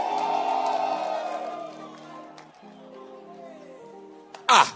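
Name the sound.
audience shouting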